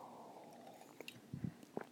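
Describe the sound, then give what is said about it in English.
A few soft sips of coffee and mouth sounds in quick succession over a faint low hum, with no one speaking. “Let me take another sip of coffee here.”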